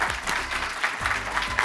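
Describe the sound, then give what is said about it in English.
An audience applauds a panel after a discussion, in a steady, dense wash of clapping that holds at an even, fairly loud level throughout, with no voices breaking through. “Could we just give a round of applause to this wonderful panel?”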